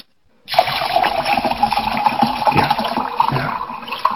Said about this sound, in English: That sounds refreshing, whatever that you're pouring, right? Guys, I made this real strong.